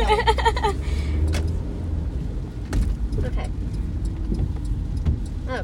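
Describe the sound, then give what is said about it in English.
Steady low rumble of road noise from inside a moving car in slowing traffic, continuous and fairly loud throughout, with a voice briefly speaking near the start over the engine and tire drone. “Why are we slowing down cars? I need to get in that lane.”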